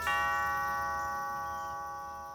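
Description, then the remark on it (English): A single bright chime of a doorbell at an old house in LA rings out with a sharp strike, its clear tones sustaining and slowly fading away, with no talking. “Holding the slip of paper in my hand, I walked across the flagstone path that cut through the big lawn and rang the doorbell.”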